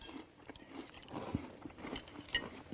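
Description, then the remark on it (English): Crunchy chewing of French Toast Crunch breakfast cereal with milk, a steady run of wet, crackling bites and mastication, fairly quiet, with no talking. “Which one are we doing, apple or French? We're doing French first. French toast crunch. Give it a whirl.”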